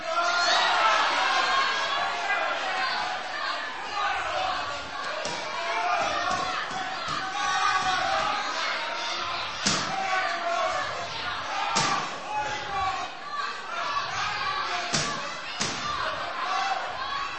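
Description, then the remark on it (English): An audience split into groups cheers and shouts continuously and loudly for competing teams during a timed contest, with sharp thuds and bouncing impacts breaking through the noise every few seconds. “You guys cheer for the middle team here.”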